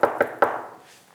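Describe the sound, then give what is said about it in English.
Three firm knocks on the wooden door of a very small house, evenly spaced in quick succession, fairly loud, followed by a brief fading resonance and quiet. “And I'm thinking, and all of a sudden we hear this.”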